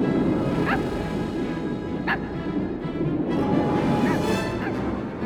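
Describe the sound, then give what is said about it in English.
A small dog, Zero, the ghost dog reindeer, gives several short, high-pitched yips and barks spaced a second or two apart, standing out over a steady, dense background wash. “And what to your wondering eyes disappears is Jack's little friend Zero, the ghost dog reindeer.”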